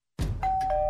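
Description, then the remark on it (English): A doorbell rings at a family home's front door after a dull low thump, its bright electronic chime holding one steady tone with a couple of brief bursts layered over it, fairly loud and without any talking. “This family is at home, but they won't be answering the door.”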